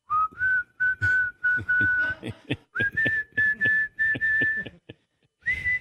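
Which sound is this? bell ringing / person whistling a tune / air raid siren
person whistling a tune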